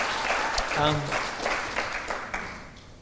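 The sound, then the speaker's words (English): A crowd claps steadily for about three seconds in applause for a healthy church, a dense patter of hands with sharper individual claps, while a voice briefly whoops or cheers near the start. “Yeah, we could applaud that.”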